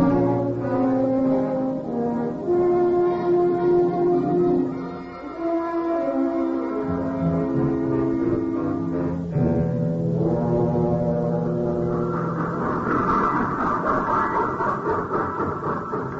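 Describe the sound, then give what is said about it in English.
A loud train locomotive horn, on a locomotive with cobwebs on it, blares in long, sustained chords that shift pitch several times, with rumbling train noise building underneath toward the end. “First train I ever saw with cobwebs on the locomotive.”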